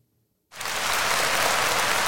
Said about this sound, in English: There's your clap.